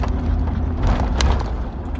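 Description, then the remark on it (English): A steady, low rumble of a car driving along a street called Lincoln, with continuous road and engine noise that stays even and fairly loud throughout, with no voices. “I'm actually driving down a street called Lincoln, which is the town we live in.”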